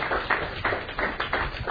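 An audience applauds, many hands clapping in a dense, uneven patter that swells and dips slightly, at a moderate level with no voices over it.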